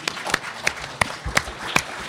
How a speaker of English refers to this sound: Golf clap. It's like golf.